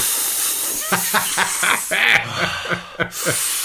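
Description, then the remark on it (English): A voice imitates the hissing vacuum air leak in the central locking of a Mercedes 123's passenger door: a steady breathy hiss broken by a rapid, rhythmic string of about eight short voiced puffs, fairly loud throughout. “It's in my Mercedes 123, there was an air leak in the central locking in the passenger door.”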